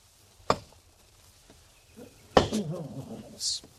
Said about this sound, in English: Spend all day chopping wood just so somebody can burn it up.